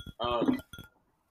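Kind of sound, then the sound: household object, glasses clinking together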